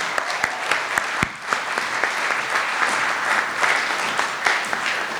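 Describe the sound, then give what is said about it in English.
An audience breaks into sustained applause, a dense wash of clapping with sharp individual claps popping out, steady and fairly loud throughout the whole stretch with no voices. “So please give a round of applause for and welcome at the same time,”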